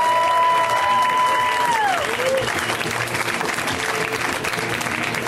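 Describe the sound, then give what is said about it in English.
Loud, dense applause from a large comedy-show crowd welcoming the first comic of the night, with a high whistle-like tone sliding downward in the first two seconds before the clapping carries on alone. “His first time doing the show, so we're going to give him a wild round of applause.”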